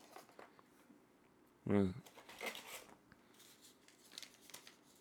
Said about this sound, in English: Oh, what is this? The sound of paper. There you go. You can read up on it if you want to. Virgil Caine, Ribbon Rail Rye, straight rye whiskey from South Carolina.